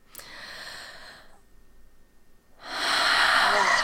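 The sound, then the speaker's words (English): A deep, breathy inhale is cut short by a sharp cough-like catch. After a brief pause comes a loud, rushing exhale. No talking. “Oh, sorry, I had a cough.”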